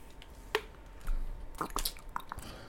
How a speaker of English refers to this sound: Ooh, that drink. Ooh, what you drinking on? Water? Aquafina.